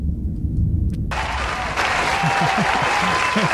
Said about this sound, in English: We've been getting a lot of applause lately. Only on the Patreon.